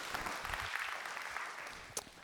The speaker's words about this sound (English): You can clap here. You're allowed.